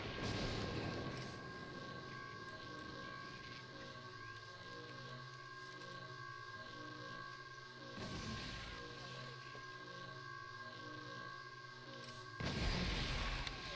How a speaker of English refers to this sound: Where are those explosions coming from?